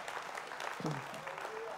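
A church audience claps steadily, a dense, even wash of many hands at a constant loud level, with a brief vocal cry rising out of the crowd partway through.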